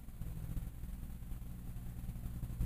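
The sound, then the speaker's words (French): A tractor engine, driven around by the speaker's brother, drones steadily, a deep throbbing rumble with low, even pulses that stays fairly loud throughout, swelling slightly at the very end. No voices are heard. “Ah non, c'est un tracteur.”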